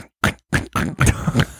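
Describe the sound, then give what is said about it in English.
A person's voice imitates a pig with a few short, nasal grunting bursts in quick succession, fairly loud, after a brief silence. “Bro, can you give me your best pig impression?”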